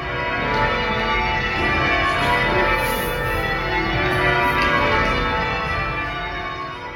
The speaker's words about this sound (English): But then you have these other groups that just get together every Tuesday to rehearse and every Sunday to ring the bells. And they have these crazy mathematical patterns, and it's a whole society of ringing.